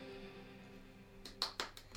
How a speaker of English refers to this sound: Thank you. It's always a pathetic little clap when it's just me.